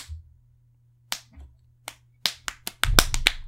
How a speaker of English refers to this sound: Harwin shook Star, and Star slapped Reiner upside the head.